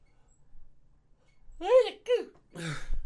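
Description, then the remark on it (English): A stifled sneeze blended into a yawn: after a moment of near-silence, two short strained vocal bursts are followed by a longer drawn-out breathy sound. “Was that a fake sneeze because you were yawning?”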